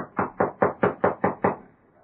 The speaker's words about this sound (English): Knock on the door again.